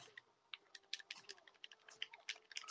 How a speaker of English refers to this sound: I like how in the background of this video, you're just going to be able to hear like clicking of buttons frantically. Yeah, frantic button mashing.